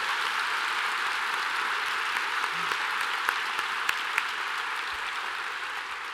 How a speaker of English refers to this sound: Last but not nearly least, thanks to all of you for being here with us tonight. Let's have a round of applause for everyone who made tonight possible.